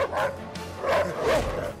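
A dog barks and yips in quick, energetic bursts, three or so close together, fairly loud, with a low steady hum underneath.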